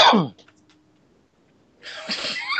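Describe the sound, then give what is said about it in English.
A single sharp, explosive cough, followed by a second or so of near silence before a loud, breathy burst of noise returns. “That was a legit cough.”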